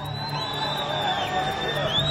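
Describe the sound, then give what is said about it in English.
A crowd cheers steadily and loudly as a Red Cross convoy crosses into Egypt during a hostage release, a dense roar of many voices with shrill whoops and high whistles rising above it throughout. “Cheering was heard as a Red Cross convoy crossed into Egypt, and those freed will now be taken to hospitals in Israel.”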